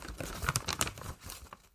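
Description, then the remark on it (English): A blue plastic bag holding a delivered parcel crinkles and rustles as it is opened by hand, a burst of irregular crackling that fades out within two seconds, with no voices. “It's in a blue plastic bag.”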